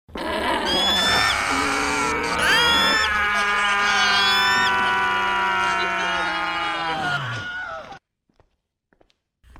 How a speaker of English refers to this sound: And inhale. And scream.